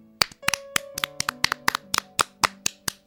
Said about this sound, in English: First with one finger, next with two fingers, another one with three fingers, and now with four fingers. The little finger also along. Now we'll clap with four fingers on our left palm.